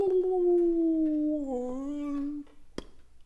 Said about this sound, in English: That's beautiful. Humpback whale.